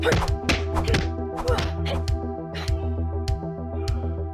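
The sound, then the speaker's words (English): A rapid series of dull, heavy thuds of fists punching a wall, about eight impacts in a slightly uneven rhythm over a steady tonal hum in the background. “I just stop wasting my punches on you. Thank you. And go for the wall!”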